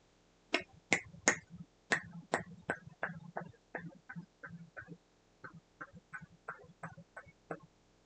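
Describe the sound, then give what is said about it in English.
A clock ticks steadily, a long run of sharp, dry clicks at a quick, even pace. The first few ticks are loudest, then the rest settle into a softer, regular rhythm with no voices. “There was only one, the sound of it ticking.”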